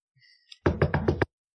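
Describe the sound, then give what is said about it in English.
Four quick, evenly spaced knuckle knocks on wood, fairly loud, preceded by a brief faint tonal sound and followed by silence. “Knock on all the wood, like all the woods.”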